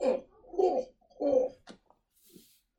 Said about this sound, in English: Just by coughing, I'm going to tell you who the artist is.